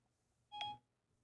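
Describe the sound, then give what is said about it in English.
A single short electronic chime from Siri, the voice assistant on a phone that was run over by about 30 street stock cars: a brief bright tone lasting about a quarter second, heard alone against a quiet background with no talking. “Oh, she responded, but the service is down.”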